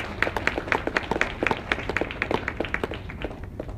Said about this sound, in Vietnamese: Chúng ta hãy cho một tràng vỗ tay để tri ân cho các bạn này.